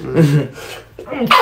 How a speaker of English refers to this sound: Excuse me, man. Bless you.